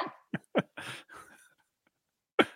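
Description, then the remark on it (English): A dog named Reba makes a quick run of short, sharp vocal noises, a few yips and a longer whining grumble, then falls quiet before one more burst. Fairly loud, with no talking. “So you think your dog objects? Your dog is like, what are you talking about right now?”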